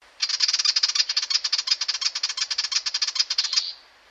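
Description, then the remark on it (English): A willie wagtail gives a raspy, scolding call: a fast, harsh stream of buzzy pulses lasting about three seconds, fairly loud, with no other sounds around it. “And there's one that's a kind of raspy.”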